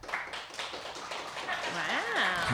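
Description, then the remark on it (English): A thin scattering of claps from about 15 audience members born in Vancouver, light and uneven, with a single rising whoop or cheer cutting through near the end. “Who here is from Vancouver, born Vancouver? Round of applause.”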